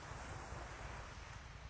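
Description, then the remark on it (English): Ocean waves washing onto the shore in the morning in a steady, unbroken roar, with a rumbling low end and a gusty hiss of wind across the microphone, as a man heads out for his morning swim in the ocean. No voices are heard. “This gentleman here swims every morning, going out to get his morning swim here in the ocean.”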